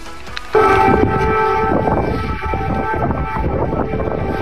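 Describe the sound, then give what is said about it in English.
An air raid siren wails loudly and steadily across Kyiv, Ukraine, during President Biden's visit near the one-year mark of Russia's invasion. Its droning tone swells in abruptly and holds on with a layered, slightly shifting pitch over rumbling background noise. “Biden sending a strong message of support to Ukrainians as air raid sirens wailed across Kyiv, underscoring the very real risk involved in this trip.”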